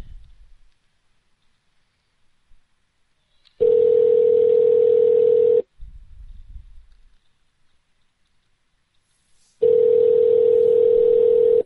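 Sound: telephone call ringing unanswered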